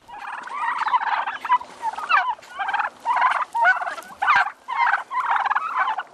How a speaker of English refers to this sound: They're the old black turkeys. The reason I go with heritage breed is because they're actually able to handle the weather outside.